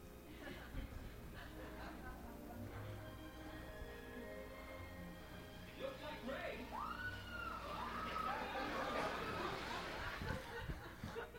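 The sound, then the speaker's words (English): A crowd of voices shrieks and cries out in fright, high wavering screams rising over a steady babble of chatter that grows louder toward the end. “they were terrified and they screamed, it's a ghost.”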